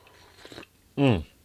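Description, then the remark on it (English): A brief, soft slurping sip, followed a moment later by a short, satisfied voiced exhale, like an "ahh" after drinking. “Hold on, I'm going to have another sip.”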